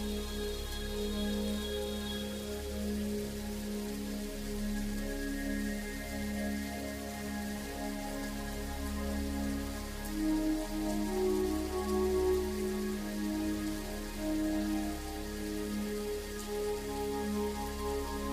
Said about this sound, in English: So I put canned thunder on it for my keyboard. So now I just ruined it all for everybody's listening. It's actually my garden hose in stereo.